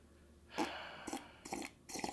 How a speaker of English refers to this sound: You slurp into my mic. That's actually your mic. I was going to say, that's my mic, so I'll slurp into whatever mic I want.